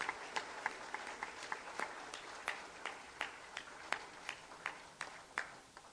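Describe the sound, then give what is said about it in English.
An audience applauds in worship, with a dense wash of clapping and sharper individual claps popping out at a steady, almost rhythmic pace. It is moderately quiet, with no voices heard. “Applaud our great King.”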